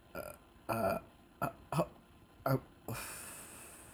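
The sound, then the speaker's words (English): A fairly loud burp comes out as a series of short guttural croaks spread over a few seconds, followed by a breathy exhale. “Was that a disgusted burp?”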